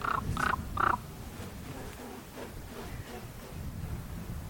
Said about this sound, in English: Here comes a raven.